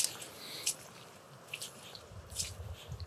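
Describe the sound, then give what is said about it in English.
Faint, steady rush of brown water flowing in at the top of a lake, a soft continuous wash with a few brief splashy ticks and low rumbles mixed in, no voices. “But yeah, so it's very brown water. And you can hear it coming through at the top of the lake.”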